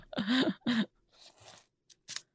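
Gum chewing: a few short, moist crunching and smacking mouth noises in quick irregular bursts, preceded by two brief voiced hums, with no clear speech.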